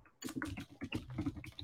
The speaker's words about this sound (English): Of course, let me just do my typing very, very briefly.